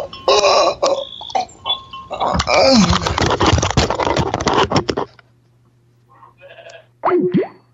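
A goat bleats loudly in a long run of wavering, rasping cries, then after a short pause gives a couple of briefer, quieter bleats.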